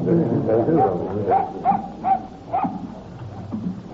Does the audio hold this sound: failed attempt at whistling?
no